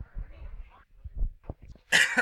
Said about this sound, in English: Sorry, I got this dry cough that I'm going to have for the rest of my life.